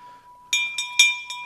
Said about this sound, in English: But anyways, but then there's the dinner bell, right? Somebody ring the dinner bell.